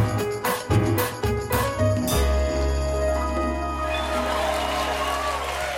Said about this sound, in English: Do they do that for everyone, or am I special? You're special. Okay, cool. You're special. You're all special. Right, you're the only one. You're the only one they applaud for. That's cool.